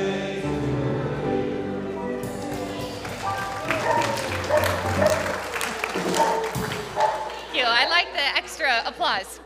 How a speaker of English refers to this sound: Applause.